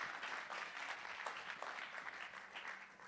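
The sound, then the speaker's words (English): A crowd applauds steadily, a dense wash of many hands clapping at an even level for about three seconds, with no voices standing out, as a guest makes his way up on stage. “So why don't you give him a round of applause as he makes his way up.”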